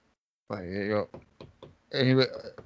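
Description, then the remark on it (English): A few quick, light knocks on a shut stall door, checking whether someone is inside, set between two short bursts of a person's voice. “So I'm the douchebag that's got to like knock.”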